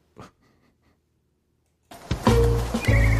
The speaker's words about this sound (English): It's a beautiful horse. What would you name your horse?